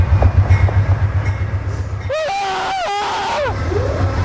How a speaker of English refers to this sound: are running alongside the train as it's beginning to stop at the nearby station.